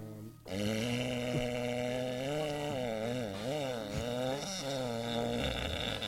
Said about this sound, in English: Excuse me. And the fart jokes never get old. We're 3 years old again.